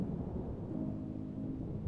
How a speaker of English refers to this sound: That is not thunder, after all. It is a sound like an approaching train, an engine like a heartbeat.